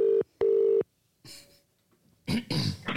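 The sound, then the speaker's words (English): A telephone ring tone sounds as two short, steady electronic bursts as a prank phone call is placed, followed by a pause and then some brief rustling, clattering handling noise, as if the call is being picked up. “we tried to catch Paula out with a prank phone call”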